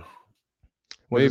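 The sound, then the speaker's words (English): A couple of faint, isolated clicks in the audio feed pop in a brief quiet gap, one dull and low, one sharper, with a voice before them and a louder voice right after. “That'd be it's clicking a little bit too.”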